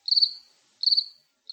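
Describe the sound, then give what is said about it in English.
A cricket chirps in short, bright trills, three bursts spaced evenly with brief silences between, clear with no voices or other sounds around it. “Where's the cricket? I got it right here.”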